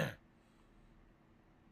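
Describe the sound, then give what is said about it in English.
A single short, rough throat-clearing sound from a person with a hereditary medical condition, fairly loud, cut off right at the start, followed by quiet hiss with no talking. “I apologize that you hear me clearing my throat.”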